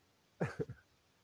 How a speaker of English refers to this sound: Oh, God. Sorry for my coughing.